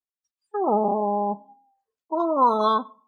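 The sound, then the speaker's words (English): A small dog lets out two drawn-out, whining howls, each about a second long with a brief pause between, fairly loud with no one talking. “Oh, he's such a nice little dog.”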